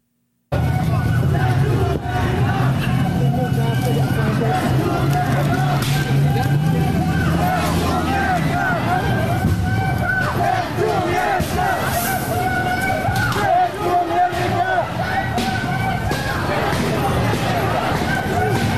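Loud crowd of marchers in a street protest parade shouting and chanting continuously, with sharp irregular bangs breaking through as windows are busted out.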